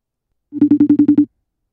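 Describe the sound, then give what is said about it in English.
A single short burst of a phone ringing tone as a guest is called on the phone, a steady electronic trill that pulses rapidly about seven times in under a second, clear with no voices. “So let's get Brendan here on the phone and see how all this started.”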